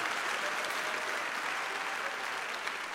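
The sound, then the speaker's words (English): An audience claps steadily for about three seconds for a performer after her part, a dense, even wash of many hands with no pauses and no voices standing out. “Yeah, you definitely can applaud her.”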